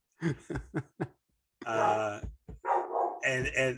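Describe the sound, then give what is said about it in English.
A female dog barks excitedly: four quick sharp barks in a row, then longer, drawn-out yelping barks with a whiny, howling edge. “My dog got excited. She agrees.”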